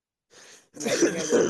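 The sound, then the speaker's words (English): A brief soft breath is followed by a louder, rough throat-clearing cough lasting under a second, with no talking. “Sweet cough button.”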